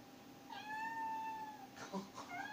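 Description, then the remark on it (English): An Alexa smart speaker, asked to meow like a cat, plays a recorded cat meow: one long, rising-and-falling tonal meow, then a couple of shorter, brighter mews close together, clear and fairly loud. “Alexa, meow like a cat.”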